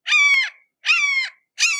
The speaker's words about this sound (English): can you edit in a hawk screeching?